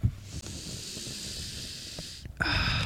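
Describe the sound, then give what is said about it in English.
A person sniffs coffee: a long nasal sniff drawn in steadily for about two seconds, followed by a brief pause and a second, harsher snorting inhale. No one speaks. “Hold on, let me take a sniff.”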